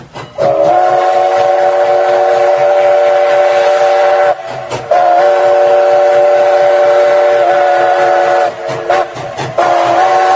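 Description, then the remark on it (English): A train passes on the railroad tracks, its horn sounding in long, loud, steady blasts: two sustained ones, then a shorter third. No one speaks. “Kicked it right onto the train tracks.”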